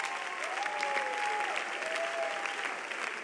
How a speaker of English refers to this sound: Church, give a mighty clap offering unto Jesus.